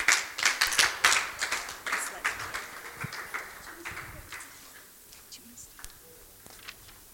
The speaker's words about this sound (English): So let's give our special guests a huge round of applause, and we're going to welcome them up.